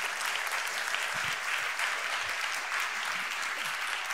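Sustained applause from an audience, a dense, steady wash of many hands clapping at an even loudness for about four seconds, with no voices standing out.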